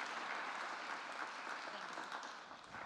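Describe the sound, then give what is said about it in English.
Steady crowd applause as a woman comes forward to share a story with the community in the evening, a dense wash of many hands clapping at a fairly even loudness, thinning slightly toward the end. “Will you give her a round of applause as she comes forward to share with us this evening?”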